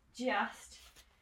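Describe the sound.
A zip pocket on a running vest is pulled open in one quick rasp, following a brief murmur of a voice at the start.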